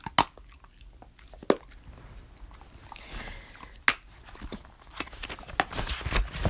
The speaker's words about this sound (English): Oh, by the way, the crunching you hear is our dog. Dog. She has one of those dried yak cheese blocks that are supposed to be a good chew toy for them, and she's just like chewing on that. We chose chewing over barking.